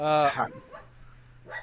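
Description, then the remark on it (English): A dog lets out one loud bark with a slightly whiny, yelping edge, then it goes quiet except for a low steady hum and a faint sound at the end. “My dog says hi.”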